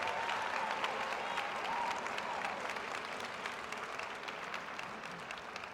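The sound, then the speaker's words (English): A crowd of students applauds their faculty and staff members at a Whitworth University ceremony, with dense, continuous clapping that holds at a fairly even level for several seconds and eases slightly toward the end; a faint tone drifts underneath early on. “So students, would you give your faculty members and our staff members a round of applause this morning?”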